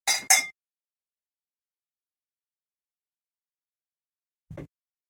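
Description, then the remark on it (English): Two quick, bright clinks of drinking glasses tapped together in a toast, ringing briefly, followed by a long silence and then a soft, low knock near the end. “So here's to all of you guys. When you hear the clink drink.”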